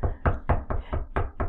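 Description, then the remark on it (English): About seven firm knocks on a door in a quick, steady rhythm, fairly loud, with a low thudding body to each hit and no voices. “No, motherfucker, you should have been standing right there knocking at his door.”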